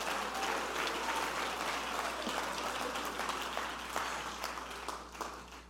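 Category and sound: crowd, audience clapping hands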